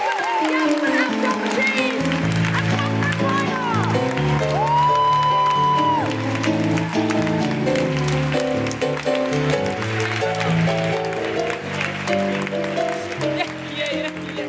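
A sustained round of audience applause, steady and loud for the whole stretch, with whoops and cheers rising over the clapping and some tonal, music-like sounds layered underneath.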